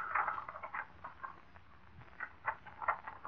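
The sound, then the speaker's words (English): Ledger pages turning: a few soft, dry papery rustles and flicks in irregular bursts, fairly quiet, with no voices. “Pages of my ledger turning.”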